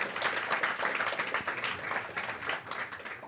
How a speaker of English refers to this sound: All right, let's give them a round of applause.